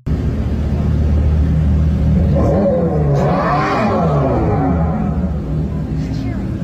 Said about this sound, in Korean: 근데 이 전기 머슬카가 그래서 이게 소리가 난답니다. 이제 그 V8 엔진의 그 사운드를 재현을 이제 재현을 하기 위해서 결국은 뭐 결론적으로 얘기해서 그냥 스피커를 탑재했다 이 소리입니다. 스피커를 넣어서 밟을 때 이제 소리가 난다는 건데